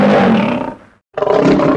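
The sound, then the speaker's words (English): A lion roars loudly, a deep rumbling growl that trails off, pauses for a breath, then erupts again in a second powerful roar. “This soon awakened the lion.”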